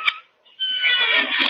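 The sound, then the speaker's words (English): A squeaking porch swing: a short creak, a brief pause, then a long, loud, high-pitched squeal with a whiny, almost meow-like tone. No one speaks. “A squeak in the porch swing is like a moose call to a mosquito.”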